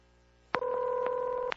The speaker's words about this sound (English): it's time for... Phone Fun! Phone Fun! The dialing, devilishly demonistic